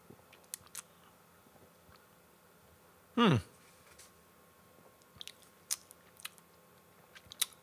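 A single loud slurping sip of pumpkin beer lasting under a second, surrounded by faint mouth clicks and small handling noises against otherwise quiet.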